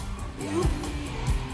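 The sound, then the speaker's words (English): At a concert, a crowd of kids and teenagers screams and sings along in a dense, roaring wash of sound, with heavy low thumps landing about twice and bright bursts pulsing steadily overhead. “You hear all the screaming?”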